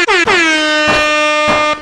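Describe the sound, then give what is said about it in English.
Loud blasts of an air horn sound effect, a quick double honk followed by a sustained blare, piercing with no talking. “Hashtag, someone get … an air horn.”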